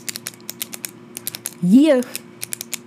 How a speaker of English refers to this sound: In the soundtrack of your life, clicking pens would be the chorus. Ah, the sweet habitual sound of a clicking pen. Music to my ears.